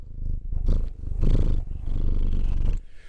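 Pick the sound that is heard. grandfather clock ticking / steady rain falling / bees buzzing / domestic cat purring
domestic cat purring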